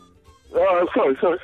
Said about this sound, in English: No, it's the delay. Don't try and get technical with me. It's the delay. It's a 7-second delay, so it's just causing an echo.